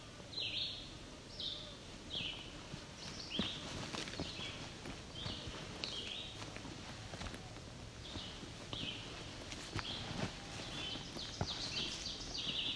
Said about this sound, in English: That's the oven bird again.